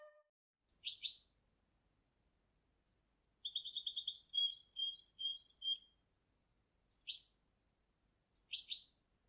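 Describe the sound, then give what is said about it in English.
A goldfinch sings alone and clearly, starting with short bright chirp bursts, then a longer rapid twittering, warbling phrase, and ending with two more quick high chirps. “You can hear how Vivaldi's imitated the pitch bends and the rhythms there of the goldfinch's song.”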